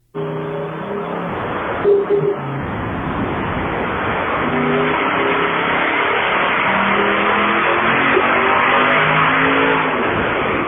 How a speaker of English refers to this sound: Okay, that's not a diesel. That's not a diesel, and it's revving way high. It sounds like a Camer V8. That's an LS. You think it's an LS? I think it's an LS.